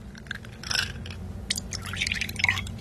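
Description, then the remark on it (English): Whiskey is poured into a glass in President Gomobo's office, in a few gurgling, splashy bursts with bright trickling and dripping tones, moderately loud over a steady low hum, with no voices. “He offered us both a glass, and of course we couldn't say no.”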